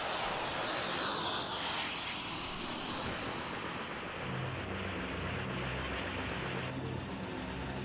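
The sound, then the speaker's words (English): Helicopters flying, a loud, steady roar of engine and rotor noise that fills the whole recording, with a low throbbing hum growing more noticeable toward the end. “helicopters.”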